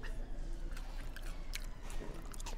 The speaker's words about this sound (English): Oh, God, I'm so sorry. He just chewed into the microphone. I'm so, so sorry. I put it in front of his face to say something funny, and he just chewed potato salad.